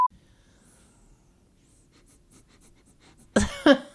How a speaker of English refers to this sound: My nose is squeaky and I can hear it in the headphones here. That's funny. Okay, I gotta get away from the microphone. My whistling booger is making noises.